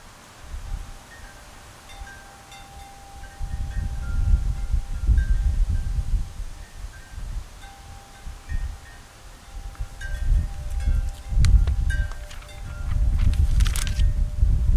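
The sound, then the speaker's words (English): Gusty outdoor wind buffets the microphone in rumbling surges that rise and fall over several seconds, with faint rustling, a few thin high tones and occasional light clicks in the background. “Windy, I got too much going on.”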